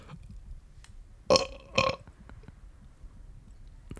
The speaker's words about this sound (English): I have to burp again